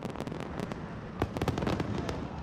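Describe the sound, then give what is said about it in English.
Fireworks burst over a film festival as Tom Cruise leaves after the Top Gun Maverick screening, in a rapid, continuous barrage of sharp cracks and pops, several louder bangs standing out amid dense crackling, with no voices. “Cruise received a sparkling send-off as he left the festival and fireworks lit up the sky.”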